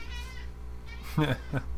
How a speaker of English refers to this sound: My cat. Yeah, Gilly's joining the fray.